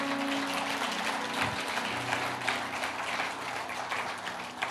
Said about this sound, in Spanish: Come on, dale un fuerte aplauso a Dios.